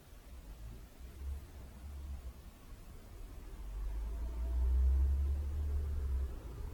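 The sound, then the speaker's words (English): Low rumble of cars going by outside, faint at first and then swelling to a louder pass before easing slightly, with steady background hiss and no voices. “And thoughts come and go, and sensation like the cars.”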